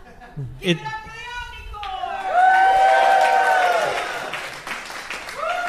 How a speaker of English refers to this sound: Oh, look at this. Wow, it's an Omnicord. Oh, wow. Applause for the Suzuki Omnicord.